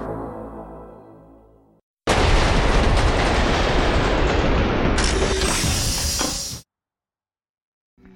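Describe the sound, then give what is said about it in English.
A train rushes past on the rails in a loud, steady roar of rumbling and clatter lasting a few seconds, then cuts off abruptly, preceded by a fading tonal hum. “The logo didn't stream out of the train.”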